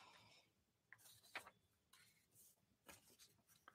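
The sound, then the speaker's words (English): Papers being shuffled while searching for a lost sheet, with a handful of brief, crisp rustles and crinkles arriving irregularly, fairly soft and with no talking. “I lost a paper.”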